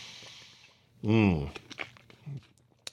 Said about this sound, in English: Man, my voice is just a little bit dry today. You don't mind if I take a sip of water on the air, do you? Of course not. Okay.